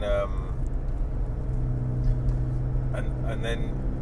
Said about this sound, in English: Then you start to hear all the noises of the car, and you start to think, okay, this is a bit different. It's just a guy talking whilst driving, and that's exactly what it is.